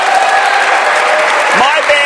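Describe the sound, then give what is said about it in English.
A studio audience bursts into loud, steady applause and cheering for a company's plan to have over 130 stores helping connect veterans with services, dense clapping mixed with whoops and shouting voices, sustained without a break. “Yes, let's cheer for that.”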